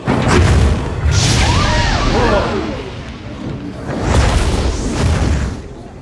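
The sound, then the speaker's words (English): Fireworks boom in loud, rumbling bursts, one at the start and another near the end. Between them come wavering, whistle-like tones over a constant roar. “But of course it ends with such high drama and fireworks and...”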